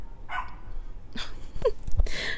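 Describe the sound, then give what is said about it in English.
A dog barks several times in short, uneven bursts, some sharp and yippy, with a brief whine-like tone in between; no one speaks over it. “I think it's barking at me.”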